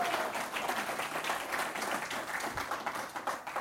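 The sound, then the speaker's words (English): An audience applauds their pastor steadily, many hands clapping in a dense, even wash of sound that holds at a fairly constant level throughout, with no voices standing out. “How about a round of applause for your pastor?”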